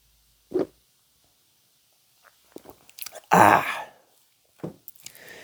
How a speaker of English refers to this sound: Take a sip of kombucha.